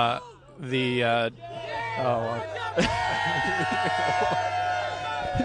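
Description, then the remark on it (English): Several voices yell and whoop in loud, wavering cries from the Chop minivan driving by, over a steady low engine rumble, with overlapping shouts continuing throughout. “I don't know what these mics pick up, but for anyone wondering, that was the Chop minivan driving by screaming.”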